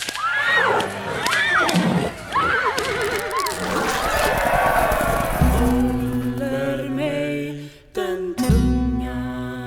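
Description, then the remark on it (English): At an execution where a woman is pulled apart by horses, horses whinny and neigh repeatedly over a noisy, shouting crowd, followed by a sustained low droning tone punctuated by a couple of sharp, whip-like cracks near the end. “And in another Scandinavian version, the instrument is a pipe which spews blood upon the guilty sister, resulting in her execution, which is a particularly horrific execution, as she is pulled apart by horses.”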